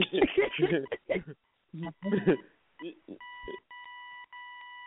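A person talks briefly, then a run of little electronic beeps follows: about three steady, sustained tones in a row with short gaps, clear, with no talking over them.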